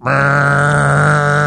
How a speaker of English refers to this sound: That's that horn they play there at some of the Vanderbilt sporting events.